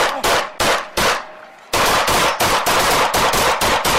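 Rapid gunfire, a string of loud, sharp shots in quick succession: a few spaced bursts, a brief pause, then a fast continuous volley of many cracks with no voices.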